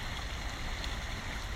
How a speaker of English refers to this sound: I don't know whether it's audible, but I am sitting on a log above a rushing brook.